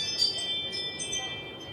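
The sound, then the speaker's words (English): A Ring video doorbell's motion-alert chime rings out in bright, sustained high tones that shimmer and hold steady for under two seconds over a low, murky background hum. “Is that the sound it makes? That's the sound that... There's motion.”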